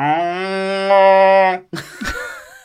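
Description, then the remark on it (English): A low, droning War of the Worlds-style sci-fi siren sound effect blares steadily for about a second and a half, sounding much like a cow's moo, then cuts off into a brief burst of rough, scraping noise. “That was a War of the Worlds like siren, but it sounded like a cow, so I apologise.”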